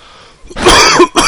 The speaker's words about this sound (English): Apologize for the coughing.